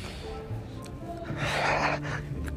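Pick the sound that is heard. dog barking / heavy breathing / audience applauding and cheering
heavy breathing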